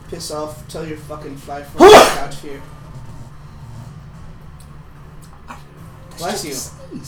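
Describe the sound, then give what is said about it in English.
A single sharp, loud sneeze bursts out, standing above a man's voice that talks before and after it. “Bless you.”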